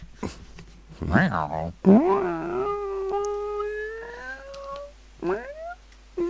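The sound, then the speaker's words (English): A human voice mimics a crying cat: a couple of wavering yowls, then one long drawn-out wail that slowly rises, and finally a short rising mew. “That's not even it's a cat cry.”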